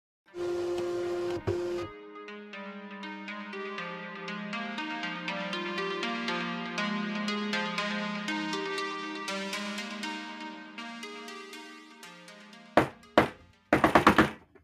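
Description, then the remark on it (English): Melodic music plays for several seconds, then stops and gives way to a handful of loud, hard knocks on a door by a man banging hard, a couple of single thuds followed by a quick rapid burst. “I'll get it this time. Hold on a sec. It's probably... He bangs really hard”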